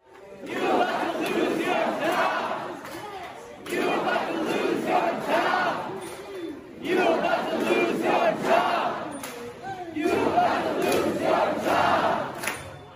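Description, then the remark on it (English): A large crowd of rioters who broke into and took over Seattle City Hall chants and yells loudly at the mayor in four repeated bursts, each a few seconds long and split by brief pauses, giving the shouting a steady rhythmic pattern. “So they've taken over there and they're yelling this at the mayor, liberal mayor, you're about to lose your job.”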